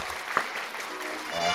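A crowd claps in a steady, dense patter of applause, moderately loud, holding throughout with one sharp clap standing out near the start; applause at the end of a show's Word of the Day segment.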